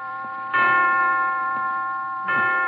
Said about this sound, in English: 5 o'clock. I didn't know the hospital had chimes.